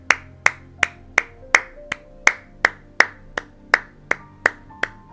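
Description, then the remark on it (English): A single pair of hands claps, a person giving themselves claps while rising to stand, in a steady, even rhythm, about fourteen sharp, bright claps in five seconds, each with a short ringing tail, with no talking. “Strengthen your clap.”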